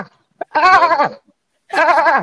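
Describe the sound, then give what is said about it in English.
A person imitates a dolphin with two loud, wavering, high-pitched calls, each about half a second long with a quavering, bleat-like warble, separated by a brief pause. “That's my best Dolphin I've got.”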